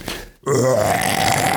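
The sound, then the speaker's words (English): After a brief hush, a long, loud, throaty burp rumbles up, stretching on for over a second with a rising, voiced tone, from a baby boy being burped by a woman. “She's going to burp him.”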